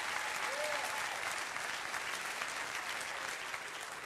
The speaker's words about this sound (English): Go ahead and clap for Jesus today. That's all right.